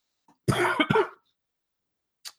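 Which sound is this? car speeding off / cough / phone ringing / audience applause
cough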